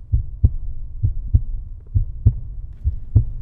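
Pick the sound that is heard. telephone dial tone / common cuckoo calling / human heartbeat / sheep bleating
human heartbeat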